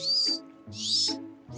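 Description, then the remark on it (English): A dolphin whistle: three bursts of high, squeaky, chirping tones, loud and fluttering, each about half a second with short gaps between, with no talking. “That sounds like a whistle.”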